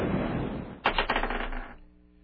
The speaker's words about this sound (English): Today I won't choose this. Let's let the Dice of Destiny choose for us.